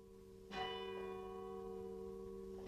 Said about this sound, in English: This is the last hour of 1959. Dark, and the clouds are moving low overhead. A light rain is falling, and in one of the outlying parishes, the bell is ringing for midnight mass.